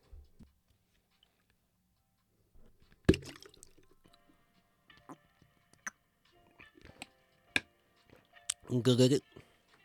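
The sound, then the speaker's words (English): Someone drinks water: scattered small clicks and sloshes, a sharp clunk like a bottle being handled, then a short burst of gulping and swallowing near the end. “Speaking of that, I need to drink some water.”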